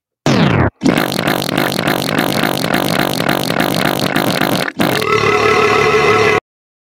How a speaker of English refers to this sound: Oh, shit. Long fart button.